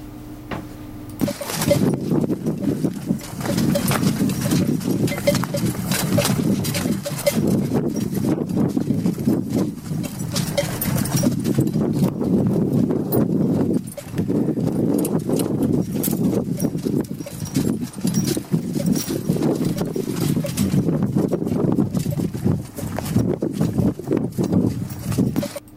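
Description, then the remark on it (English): Steady rhythmic hoof-like footfalls of a camel caravan plodding along, the camels carrying water containers on metal racks, with light metallic clinking and jangling mixed in throughout, continuous and fairly loud, with no voices. “But there's all these clinking of... Well, let's play them before I talk about them, shall we?”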